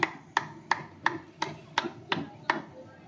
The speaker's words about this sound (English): I'm not sure what we were clapping about there. Oh, is the fire trucks coming by? This is a classic small town parade.